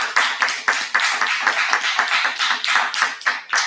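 A steady round of applause from an audience in a church, many hands clapping in a dense, bright patter that holds at a fairly loud, even level for several seconds, with no voices over it.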